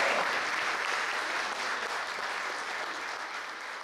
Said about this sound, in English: And so Alabama was the least vaccinated state, okay? You should give yourselves a round of applause for that.